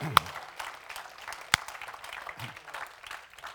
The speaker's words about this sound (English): Somebody shout amen. Amen. Let's give the Lord a clap offering and thank him.